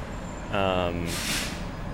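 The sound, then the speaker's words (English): Outdoors at a bus stop, a short tonal squeal from a bus's brakes is followed by a loud, sharp hiss of air brakes releasing, over steady traffic background. “Shelter from rain when we're standing out here waiting.”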